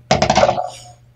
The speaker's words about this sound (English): So, I love this. This is a battle of dice now. Okay. Let's roll.